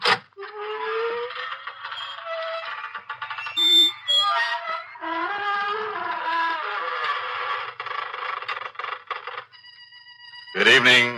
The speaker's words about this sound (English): Creaking door.